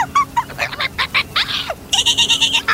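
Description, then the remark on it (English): A voice mimics a dolphin call, given as an old dolphin proverb: a quick string of shrill, squeaky chirps and sliding whistles, ending in a steady run of pulsed high squeals, with no talking over it. “I want you to see dolphin culture because an old proverb in the dolphins, they go...”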